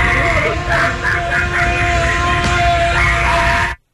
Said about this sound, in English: That is Creepy Clown battling Creepy Kid Spirit Halloween store.